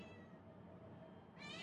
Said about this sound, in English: The cat is intentionally sabotaging us by coming in and sticking her paw under the door and meowing.